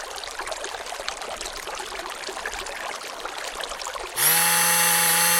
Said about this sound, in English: Listeners, the City Council, for national security reasons, have replaced the following report with the sound of a burbling brook, followed by the sound of a running blender.